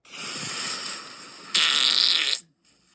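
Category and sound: sound effect, fart sound effect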